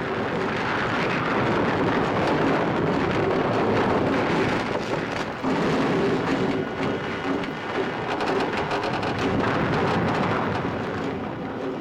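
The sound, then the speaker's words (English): A loud, continuous roar of rumbling rock fall and crashing debris over a steady mechanical hum of tanks pumping out fuel, with endless creaking from the interior of the cab running through the dense noise throughout. “I love that those endless creaking sounds and the interior of the cab here and the rock fall. Just this endless hum of the tanks pumping out the fuel here.”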